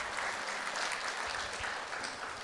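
A crowd claps steadily for a couple of seconds, a dense, even patter of many hands at a fairly constant loudness with no voices standing out.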